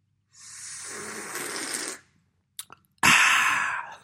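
An airy slurp of someone sipping hot coffee, followed by a couple of small swallowing clicks and a breathy exhale. No one speaks.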